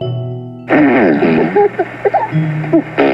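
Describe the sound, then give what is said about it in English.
Children among tall, dark trees blowing raspberries with their mouths, a long wobbling buzzy burst followed by several shorter sputtering fart noises, fairly loud, with bits of giggly voice between them. “The production of fart noises.”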